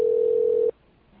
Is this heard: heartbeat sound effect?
no